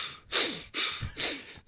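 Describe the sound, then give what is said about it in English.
A voice imitates a big man's angry heavy huffing breaths into a microphone, three forceful, breathy puffs in a steady rhythm, fairly loud, with no talking. “huffing and puffing in the mic because somebody said something bad about LeBron James”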